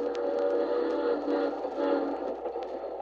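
A train rolls steadily along the rails on an overnight journey, heard from aboard, a continuous rumble with a low droning hum and faint periodic clicks throughout, no voices.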